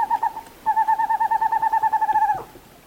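A western screech owl, a small owl about 8 inches high of western forests, calls clearly: a brief pair of hollow hoots, then a quick, steady run of toots that speeds up slightly and ends abruptly, with no other sounds.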